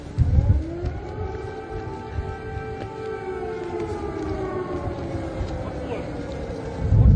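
Three separate missile air raid sirens wail together in a war zone, their overlapping tones rising and then holding in a long, steady drone, with low rumbling noise underneath and brief bursts at the start and end.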